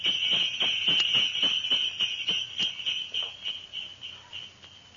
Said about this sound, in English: Well, that was a cinch. Jingle bells and the good old winter time.